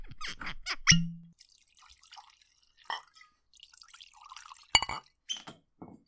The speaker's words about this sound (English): So, here, let's pour some scotch.